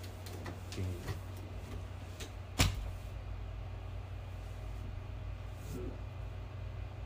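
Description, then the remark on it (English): A closet door bumps shut with one sharp clack, preceded by a few faint rattling clicks, all over a steady low hum. “That closet door's already open.”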